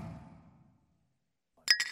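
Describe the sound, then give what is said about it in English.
Glasses clink together in a toast, a bright, ringing chime with a couple of quick overlapping hits near the end, following a fading low murmur and a brief silence. “Cheers, y'all.”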